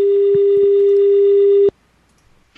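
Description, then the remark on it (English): A loud, steady electronic phone ringtone as a call redials automatically holds at one pitch for under two seconds, with a couple of faint clicks, then cuts off abruptly into near silence. No one speaks. “I couldn't hear it over the ringtone.”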